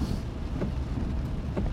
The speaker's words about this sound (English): Let's just take a moment and enjoy the rain. Rain ASMR.